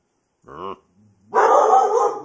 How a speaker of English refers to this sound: Wait, there's a dog out there. Harpo. Come here, Harpo.